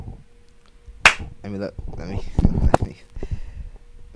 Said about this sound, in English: You want to use it as an intro or something? Clap again so that we already start.